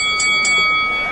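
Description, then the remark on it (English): A bell is struck twice in quick succession to start a knuckle-boxing fight, its bright metallic tone ringing on steadily and fairly loud for the rest of the moment. “And almost as soon as the bell rings, you see this bugbear lay into this behemoth of a cyclops, and he's just pounding at his, trying to take out his kneecap.”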